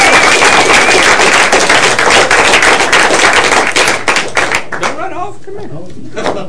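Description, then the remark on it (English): A crowd claps loudly and steadily in praise of the Lord, the dense applause filling the first few seconds before thinning out, with voices rising and a single speaker emerging as the clapping fades. “Let's give the Lord a big, big praise.”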